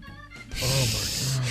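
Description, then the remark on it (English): Heavy, rasping breathing with a brief murmur of voice at the start, then a long noisy, breathy exhale that swells and holds steady with a faint voiced hum underneath. “All that heavy breathing.”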